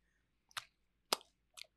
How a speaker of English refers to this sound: Take your sip of your water. I'll let the uncomfortableness just kind of sit in the room for a minute. Let's take a sip of water. We'll have a little break here.